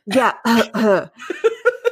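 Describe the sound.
A voice imitates a cough: three loud, rasping, voiced bursts followed by four shorter, quicker hacks that trail off, sounding partly like laughter.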